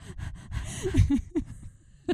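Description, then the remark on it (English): A voice imitates heavy, ragged panting, a quick run of breathy huffs and gasps rising to a louder burst mid-way, then a final sharp exhale after a brief pause. Fairly loud. “He's breathing heavily. There's a man there. Is he a captain? I'm doing your sound effects.”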